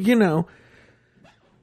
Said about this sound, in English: Oh, you're yawning. Everyone, little …'s yawning.